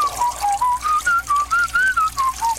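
A man whistles a bouncy tune, with about ten short, evenly paced notes rising and falling over a steady hiss of running water, as at a urinal.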